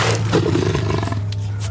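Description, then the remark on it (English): A deep, rumbling roar from a striped cat-like creature, loud and sustained for over a second, with a low throaty growl and gritty breathy texture, no voices present. “A striped cat-like creature had been prowling the shadows alongside them.”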